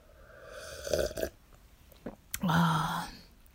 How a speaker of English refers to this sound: I boiled it and then I put the powder, that is the coffee powder, and wow, man, this tastes so good while actually recording this show. Like, I love it. So don't mind, just let me sip a few sips.